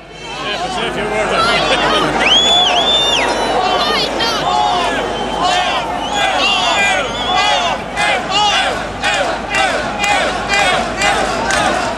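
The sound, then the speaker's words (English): A large, angry protest crowd fills Molesworth Street, Dublin, at 1 p.m. on Wednesday 22 October, protesting the government's cut to over-70s' medical cards, with loud, continuous shouting and overlapping voices, sharp high-pitched cries rising above the din and rhythmic bursts of chanting toward the end. “This is what this collective anger sounds like by Wednesday, the 22nd of October. 1 p.m., Molesworth Street, Dublin.”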